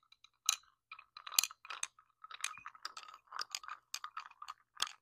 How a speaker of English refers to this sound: That's me stirring my matcha in my cup with my glass straw. It's literally so good. Literally so good.